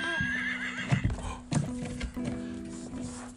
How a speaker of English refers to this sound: The horses are the fastest animals on the farm when they gallop through the fields. Can you neigh like a horse?